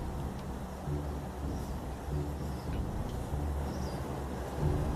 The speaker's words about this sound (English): Here comes a helicopter now. Trying to see what's going on over here. It's going towards the object. Circle is gonna go toward it. Circling it now.